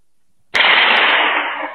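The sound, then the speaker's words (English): A single loud gunshot, the first shot heard in a played-back video recording, cracks out of silence, followed by a long, noisy echoing tail that slowly fades. No one speaks. “That was the first gunshot.”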